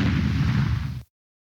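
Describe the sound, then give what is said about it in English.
A big, deep explosion roars with a loud rumbling blast for about a second, heavy in the low end, then cuts off abruptly into silence. “That was a mighty big explosion.”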